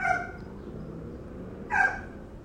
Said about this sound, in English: I am currently sitting in my garage / front yard of my home here in LA, California, and you will probably hear it momentarily, but I have a dog, a dog that loves to talk.